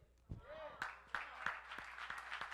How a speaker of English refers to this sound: Some of y'all giving me a golf clap. You're like, just clap for him.